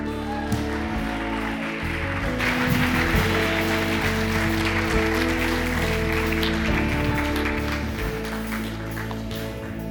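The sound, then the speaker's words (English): A church audience at Alpine applauds to welcome a guest speaker, a dense wash of clapping that swells after a couple of seconds and holds strong, with low music or sustained tones running underneath throughout. “Will you guys give me a huge Alpine welcome to our guest speaker”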